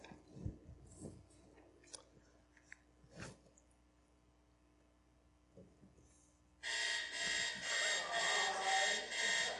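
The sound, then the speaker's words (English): After several seconds of quiet rustling and faint clicks, an alarm clock suddenly starts ringing loudly, a harsh, continuous bell clatter pulsing in rapid bursts until the end. “So, if you couldn't tell, that one was an alarm clock, and that was pretty much just to make sure you're all still awake.”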